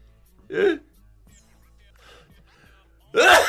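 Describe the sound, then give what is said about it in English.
A short, breathy catch of air, then a quiet pause before a loud, explosive sneeze bursts out at the end from a person with irritated sinuses. “Bless you.”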